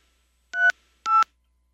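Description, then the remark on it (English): Two short electronic keypad beeps from a phone as a voicemail password is entered, each a steady dual-pitched tone lasting about a fifth of a second, spaced half a second apart, clear with silence around them. “I can't get to my phone. So please enter your password.”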